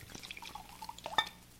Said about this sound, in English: Here, let me pour you both some wine.